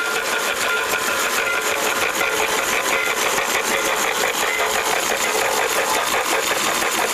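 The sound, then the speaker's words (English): A toy train, running in its showcase suspended over the track with its top taken off, plays an electronic steam sound effect that puffs in a fast, steady rhythm over the whir of its small motor, a continuous mechanical chugging that stays evenly loud throughout, with no one speaking. “It has electronic whistle, the sound of steam, puffing smoke, transformer.”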